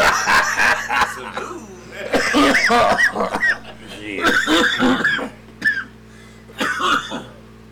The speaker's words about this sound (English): y'all niggas coughing as hell.